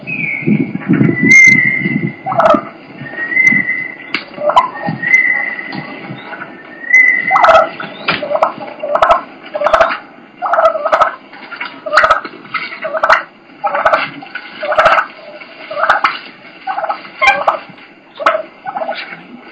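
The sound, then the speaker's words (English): Turkeys purring and clucking, a low rolling purr giving way to a steady, rhythmic run of sharp clucks and rattling fighting purrs that repeat without pause. “This next clip is a bunch of purring and clucking, and then it leads into fighting and fighting purr.”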